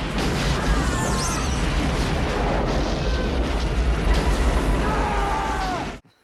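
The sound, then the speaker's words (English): A loud explosion of a boat in a film, blowing up a man living in its hull: a dense, sustained roar of deep rumble and crackling debris, with faint whistling tones and possible shouts, lasting about six seconds before cutting off abruptly. “And he gets blown up, and his response is, "Oh, thank God."”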